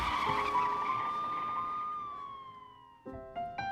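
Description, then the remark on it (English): A squad car peels away with a long, loud tire squeal that slowly sags in pitch, then a couple of shorter, sharper squeals cut in near the end. No one speaks. “He put on the Santa suit and jumped in the squad car. Floor it, Roy!”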